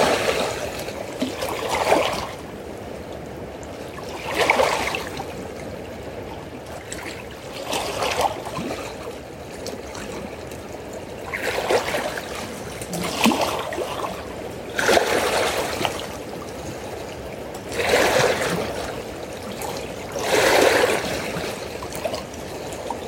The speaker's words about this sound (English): It's a beautiful paradox this morning, close by the water is gently touching on the shores, and I feel calmness. And off in the distance, it's more of a roar. The energy of the waves picking up, hitting the rocks.